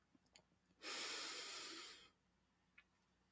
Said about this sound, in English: So before we dive in, let's take a moment together, and we can start by taking a few deep breaths. Breathing in all that we need and breathing out anything that we no longer need.